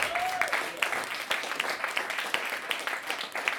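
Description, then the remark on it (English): A crowd breaks into steady applause for a man, dense overlapping claps at moderate volume, with a faint voice briefly rising at the start. “Give him a round of applause. Please do.”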